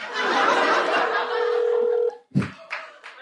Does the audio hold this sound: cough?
no